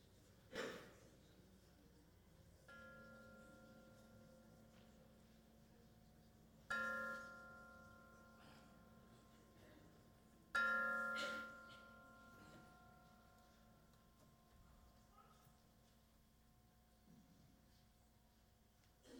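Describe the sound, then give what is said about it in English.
A bell is struck three times at a slow, even pace to call a group back together after a quiet period, each clear ringing tone lingering and fading before the next, with faint breathing in the otherwise quiet surroundings. “I will call us back together by ringing a bell.”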